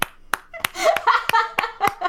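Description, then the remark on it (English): Sharp hand claps, about seven of them, come at a slow, steady beat, like a small round of applause. A warbling, tonal sound fills the gaps between the later claps. “A round of applause, yes.”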